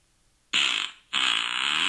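Two loud, close flatulent blasts from a fart sound effect, the first short and the second longer and sustained, with a brief gap between them and no talking.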